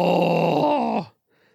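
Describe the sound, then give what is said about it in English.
A voice imitates a barbarian battle yell: one loud, sustained, throaty roar lasting about a second, holding a steady pitch before dipping slightly and cutting off abruptly, followed by a faint trailing breath. “So it's the same thing, like yelling during their fights, just like the barbarian yell.”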